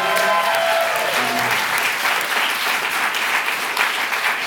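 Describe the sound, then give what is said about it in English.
A show audience applauds the night's guests at the end of the show steadily for several seconds, a dense, even wash of clapping that stays loud throughout, with a brief musical tone fading out at the start. “Give them all a nice round of applause.”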